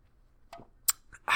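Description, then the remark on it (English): A sip of Orange Door, a double dry hopped IPA from Sketchbook Brewing of Evanston, Illinois: a few soft clinks and a sharp click, followed by a loud, hissing slurp at the end, with no talking. “Okay, I need a sip of beer.”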